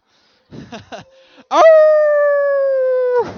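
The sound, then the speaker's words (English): An audience imitates wolf howls at one another: brief scattered vocal yelps, then one loud, steady howl-like voice held for nearly two seconds, slightly falling in pitch before fading as more voices start. “We're howling at each other.”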